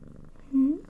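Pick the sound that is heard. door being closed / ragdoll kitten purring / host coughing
ragdoll kitten purring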